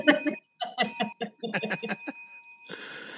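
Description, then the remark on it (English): A bell dings with a bright tone that keeps ringing throughout, while someone chuckles in short bursts over it. A rush of noise comes in near the end. “Let's keep dinging that bell for that.”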